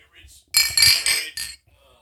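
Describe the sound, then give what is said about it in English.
Glasses of Pliny the Elder beer clink together in a toast by the microphones, a quick cluster of three or four bright, ringing knocks within about a second, followed by a near-silent pause. “We got to get a cheers by the mic. Cheers by the mics.”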